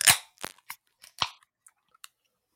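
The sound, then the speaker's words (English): A can of double dry hopped IPA, 6.9%, with Nelson, Rowaka, Citra and Wakatu hops, cracks open with a sharp, hissing snap, followed by a scatter of faint metallic clicks and taps over the next two seconds. No one speaks. “Alrighty, in 3, 2, 1 crack.”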